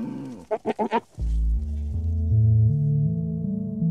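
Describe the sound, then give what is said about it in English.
A goat gives one short, quavering bleat broken into four rapid pulses, clear, followed by a steady low droning tone that shifts pitch in steps. “I mean, we've definitely come a long way because it's probably quite a bit easier to store a bunch of bills at a bank than having all these goats and cows lying around.”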